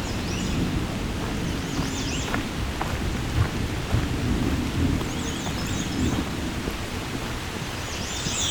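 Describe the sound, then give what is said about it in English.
Low, continuous thunder rumbles steadily through the whole recording over a wash of rain, with bird chirps faintly sounding above it. “A little bit of thunder.”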